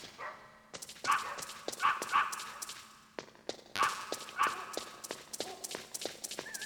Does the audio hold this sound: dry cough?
no